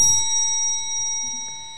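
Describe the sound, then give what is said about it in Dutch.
A bell on the table is pressed and rings out once, its bright metallic tone hanging in the air and slowly fading over a couple of seconds, with a faint low rumble beneath. “En voorafgaand aan de inhoud wilde ik nog mededelen dat er op deze tafel een speciale bel staat voor deze speciale BW-editie.”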